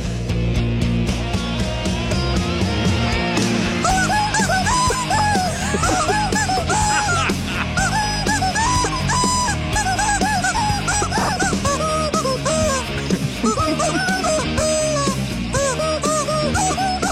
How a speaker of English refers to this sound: So Mr. Chicken is the rubber chicken. Yeah. And he covers some songs.